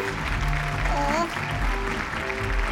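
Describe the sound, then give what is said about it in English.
A crowd claps and cheers steadily for a few seconds, a dense, loud wash of applause with a brief rising whoop or whistle partway through, welcoming a guest called down to sample tempic cooking. “let's have a big round of applause for the hungriest being in the house, folks.”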